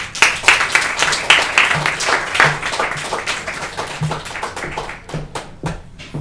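An audience at a poetry reading event applauds a poet being introduced, with a dense, steady wash of clapping that gradually thins out, ending in a few scattered, sharp individual claps.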